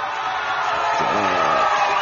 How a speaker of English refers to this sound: I'm more professional than that, but we'll give them a round of applause.